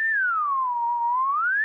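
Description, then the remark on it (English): A person whistles into a microphone: a single sustained, loud whistle gliding down from a higher pitch to a lower one and then rising back up again, with no talking. “Was that louder when I whistled into it?”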